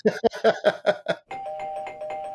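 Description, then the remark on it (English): A quick run of about six bright doorbell chime notes marking the start of a trivia section, followed by a sustained ringing tone that hangs over a busier, shimmering musical texture. Clear, with no talking. “That's the trivia bell, which means we're into the trivia section”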